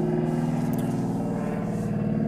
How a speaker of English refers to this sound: Wave high to the plane.